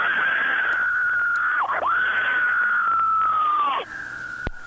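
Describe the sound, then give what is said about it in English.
A woman caller from Bayonne, New Jersey, screams on request: a long, loud, sustained high-pitched scream through a thin, tinny phone line, wavering briefly twice before cutting off abruptly near the end. “Okay, now I'm going to scream.”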